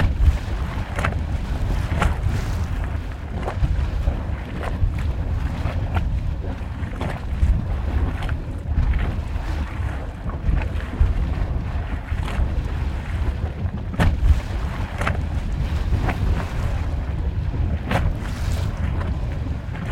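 A small geyser in Yellowstone National Park, recorded up close, churns and bubbles with a steady, loud low rumble, broken by irregular sharp pops and splashes of water bursting up. No voices are heard.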